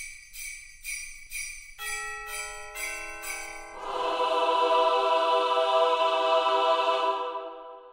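Bright chimes ring out in a quick run of struck notes, then swell into a sustained, shimmering wash of sleigh bells and ringing tones that fades away, a short Christmassy music sample. No voices.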